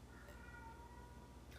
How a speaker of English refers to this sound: Yeah, you hear that cat and the fucking dogs are going, hey, hey, hey.